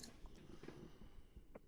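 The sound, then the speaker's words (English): A quiet sip from a drink, with a few soft wet mouth clicks and a gulp spread over a second or two, no talking. “Sorry, had to take a sip.”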